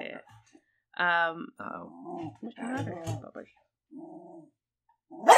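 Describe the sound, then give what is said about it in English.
A dog gives a few short barks and throaty, growling vocalizations in scattered bursts, with muffled voices mixed in and a sharp, loud noise at the very end. “That's the pepper dogs.”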